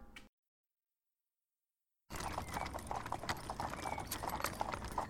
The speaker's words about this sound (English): I wake up to the noises of a horse-drawn cart driving over an uneven path. I'm sitting inside the cart and gazing around.